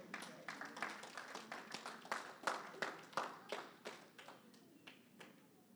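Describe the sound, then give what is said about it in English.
A scattered round of hand clapping of praise to the Lord from several people, sharp claps in an uneven rhythm at moderate volume, peaking midway and then thinning out toward the end. “Someone just give the Lord a hand clap of praise right now.”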